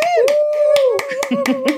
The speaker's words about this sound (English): It has been an absolute delight. Could we have a huge, huge round of applause for Dr. Rola Hallam? Woo!